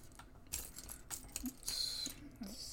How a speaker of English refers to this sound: Although they are thicker bags than Lego bags. Mm. Keeping them safe. Keeping them safe. Just going to crunch some bags. Make crunch myself feel included.